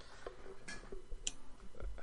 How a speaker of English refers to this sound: having a hard time just clicking away over there. No, using his Texas Instrument calculator over there. Gonna add this all up.